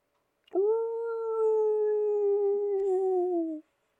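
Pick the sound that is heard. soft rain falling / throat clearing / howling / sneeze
howling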